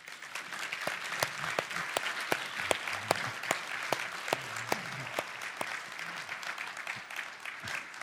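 An audience applauds steadily for about eight seconds to thank people who made sacrifices to stop the spread, a dense, even wash of many hands clapping with a few sharper claps standing out, holding at a moderate level throughout.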